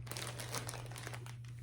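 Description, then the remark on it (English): A plastic bag holding a wig crinkles in a steady, busy stream of crisp rustles and crackles, with no voices, over a constant low electrical hum. “This one's also in a bag.”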